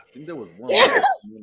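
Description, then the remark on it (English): A single loud sneeze bursts out in the middle of a conversation, with a man's voice talking just before it and resuming right after. “Bless you.”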